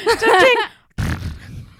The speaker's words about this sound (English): It's like, that was like a weird old fart. It's like, what's happening? That one was a weird old fart. That was the like, single coin.